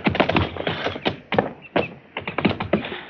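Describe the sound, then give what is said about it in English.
Horse hooves clip-clop in a quick, uneven run of hollow knocks on hard ground, fairly loud, pausing briefly before another cluster of steps. “Get off a horse, fellow.”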